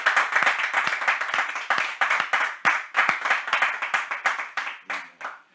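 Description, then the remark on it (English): A group claps steadily in a dense, fairly loud burst of overlapping hand claps with a brisk rhythm, thinning out and fading over the last second, welcoming a bishop. “So without much further ado, I'd like all of us to join me to welcome our own Bishop, Bishop James Antensaki, with a clap, some emojis online, dancing in your room.”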